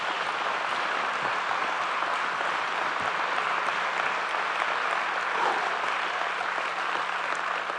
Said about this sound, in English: If you enjoyed this, give Jesus a hand clap for it, would you?